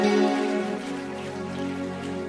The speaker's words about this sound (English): Give the Lord a mighty clap offering. Oh, give the Lord a mighty clap, your clap.